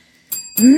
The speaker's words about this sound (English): Double ding.